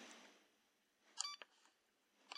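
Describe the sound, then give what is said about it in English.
Two short electronic button beeps from a pressure cooker, spaced about a second apart and fairly quiet: the first as the browning button is pressed, the second as the start button is pressed. Faint clicks and low background hiss, with no one speaking. “So the first beep that you'll hear will be the browning button pressed, and then the start button. So you'll hear two beeps.”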